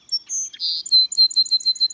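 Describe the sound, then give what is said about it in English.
A song sparrow sings: a few bright opening notes, a short buzzy burst, then a quick, even trill of repeated chips, clear and loud against a quiet background. “Few backyard birds in North America are more widespread than the song sparrow.”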